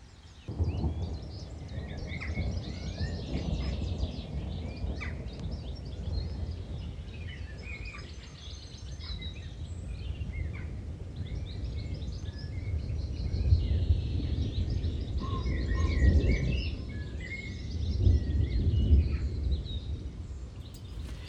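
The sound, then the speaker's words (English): Spring thunder in Wardour: low, rolling thunder rumbles steadily, swelling louder in a couple of long surges toward the end, while birds chirp and tweet faintly over the top. No one speaks. “And finally, to end this week's TisTalk, some more sounds of spring. This time, thunder in Wardour.”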